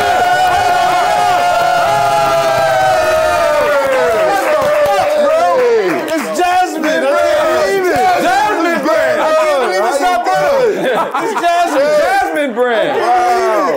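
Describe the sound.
A studio crowd cheers loudly and excitedly to welcome a woman arriving, with several voices in rising and falling whoops and shouts overlapping continuously and scattered claps mixed in during the second half.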